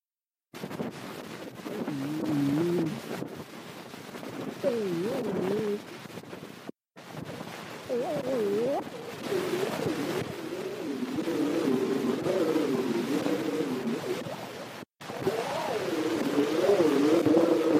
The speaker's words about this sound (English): And this particular phonautogram was recorded in September 1878, and it is labeled in writing, quote, "Metropolitan Elevated Railroad from 40 feet away."